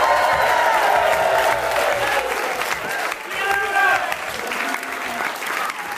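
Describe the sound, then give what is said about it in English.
A live studio audience at Vanderbilt University applauds steadily during a live radio broadcast, with dense, rapid clapping, joined by scattered whoops and cheers rising above it, the applause loud and sustained throughout. “We're broadcasting live at Vanderbilt University in front of a live studio audience.”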